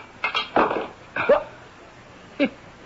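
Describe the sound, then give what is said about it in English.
A heavy wrench strikes a window pane and bounces off without cracking the glass, giving a quick cluster of sharp clanking knocks, then two more separate hits with a brief ringing tone. The hits are fairly loud, with no voices. “It bounced right off the window pane. Look, the glass isn't even cracked.”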